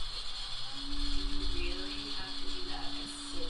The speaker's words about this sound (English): The coffee grinder is definitely one of the more alarming noises out there. It is so incredibly loud and annoying.